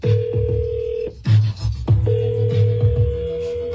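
A telephone call being placed by AI Ashley, an artificial-intelligence host at radio station Live 95.5, to a contest winner: a steady dial tone broken by short dialing bursts, then a tone resumes as the line rings. Fairly loud, with no one talking.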